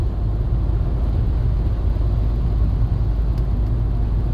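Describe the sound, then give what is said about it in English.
A truck's deep engine rumble fills the scene, steady, holding at an even loudness throughout without a clear swell or fade as it rolls by. No voices are heard. “Okay, truck. Slide on by you.”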